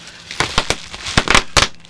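Fireworks crackling in a quick, irregular string of sharp pops and bursts, some clustered together, loud and snappy over a faint background hiss, with no voices.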